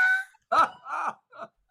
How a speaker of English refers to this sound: That's the message coming through my building to say they're about to do an alarm test.